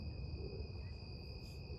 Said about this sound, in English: You can look around, you can listen. I already hear the crickets and some squirrels moving in some dried grass behind me.